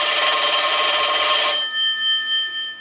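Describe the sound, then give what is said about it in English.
A single loud, bright telephone ring lasts about a second and a half, then its tone lingers and fades. No one speaks. “I'm going to take this call, but hopefully it connects to the broadcast”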